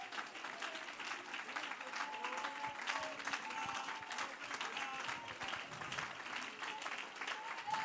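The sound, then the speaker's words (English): An audience stands and claps their hands in praise to God, a dense, continuous burst of applause that holds steady throughout, with faint voices mixed into the crowd noise. “Why don't you clap your hands like you know they need to be washed this morning.”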